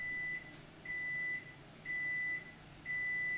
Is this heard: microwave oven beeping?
yes